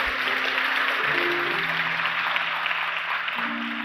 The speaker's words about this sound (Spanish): ¿Podemos darle un aplauso a mejor papá que exista, a nuestro Padre Celestial?